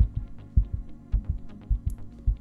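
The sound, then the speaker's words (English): A steady heartbeat thumps in deep lub-dub pairs, about four double beats at a quick, even pace, with a faint hum underneath and no voices. “Gotta start with the first sound. Primordial heartbeat.”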